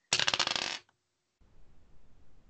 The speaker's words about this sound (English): Well, you rolled the dice. I did roll the dice to see what you would see